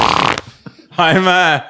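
A short rush of noise, then a loud, buzzy fart, picked up by a lapel microphone left switched on, with a steady low pitch that holds for more than half a second before cutting off.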